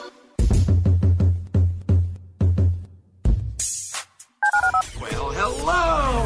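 A rapid series of about ten telephone keypad tones, evenly spaced beeps, as the number of the HRNP listener line on ESPN 97.5 is dialed, followed by a brief burst of noise and then a voice speaking over musical sound effects.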